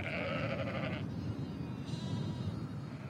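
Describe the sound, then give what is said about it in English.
A sheep lets out a loud, wavering bleat lasting about a second, followed by a fainter bleat a moment later, over a constant low rumble of a moving flock of about 30 or 40 sheep being herded through the fields on foot. “There were about 30 or 40 of them, and I was walking along as quickly as I could, trying to keep up with them, trying to keep them together.”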